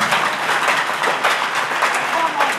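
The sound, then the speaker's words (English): A crowd claps hands together in a dense, continuous patter of many overlapping claps, steady and fairly loud for a few seconds, with a faint murmur of voices mixed in. “Clap your hands, clap your hands. Put your hands together.”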